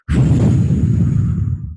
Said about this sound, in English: In this exercise, you breathe in quietly through your nose to a count of four. You hold your breath to a count of seven, and you blow air out forcefully through your mouth, like.